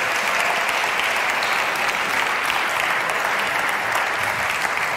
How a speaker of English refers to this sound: Round of applause for these.